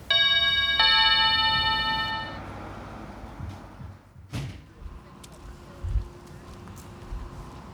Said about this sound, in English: The door chime, echoing in the background.